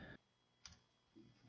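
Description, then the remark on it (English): A handful of soft, irregular keyboard keystrokes clack as someone types while looking up news, spaced out with brief pauses and no voices. “Sorry, I'm like typing and looking for stuff.”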